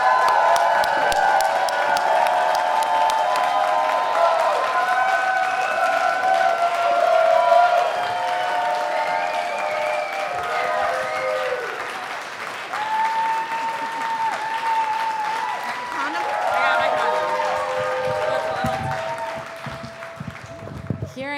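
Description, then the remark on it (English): A large audience gives a long standing ovation for a burlesque performer, dense clapping roaring steadily for about twenty seconds, with cheers and whoops rising above it before it thins slightly at the end. “I want every one of you to get up out of your chair and please give a huge standing ovation”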